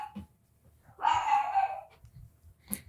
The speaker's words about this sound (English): Your dog is going nuts, dude. She is.